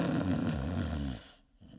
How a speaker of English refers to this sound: Is it hard for you to fall asleep if you have to listen to someone snore?